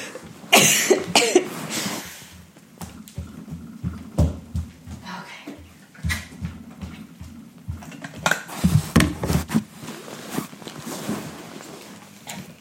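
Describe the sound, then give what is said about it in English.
A person coughs several times in sharp, irregular bursts, with soft handling and clinking noises and some faint vocal sounds between them. “Excuse me, I'm going to cough a little bit throughout this, so you're just going to have to bear with me.”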